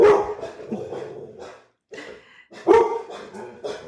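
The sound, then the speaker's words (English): A dog barks several times in short, sharp, loud bursts, with a brief pause midway before another cluster of barks. “You guys hear my dog?”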